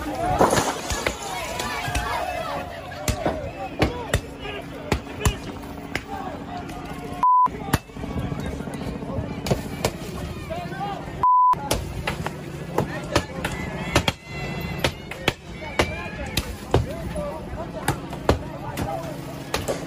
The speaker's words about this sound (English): So first, here are the freedom fighters walking down a line of cars and vandalizing them one by one.